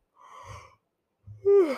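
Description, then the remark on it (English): A breathy yawn: a long airy inhale, a short pause, then a loud voiced exhale that slides downward in pitch and trails off. No one speaks. “Oh my gosh, I keep yawning.”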